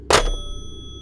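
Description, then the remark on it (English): A single loud, sharp clatter of a telephone receiver being slammed down onto its cradle in a house, followed by a faint metallic ring that lingers and fades. No voices are heard. “The loud sound of the receiver hitting the cradle made the children look up for a moment.”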